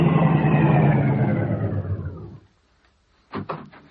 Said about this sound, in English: Car coming.